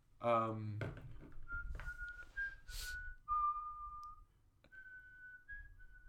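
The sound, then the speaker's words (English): A brief voiced sound at the start, then someone whistles the tune of Silent Night, a slow melody of long, clear held notes that rise and fall gently. The whistling is moderately loud, with soft background noise. “It's Silent Night.”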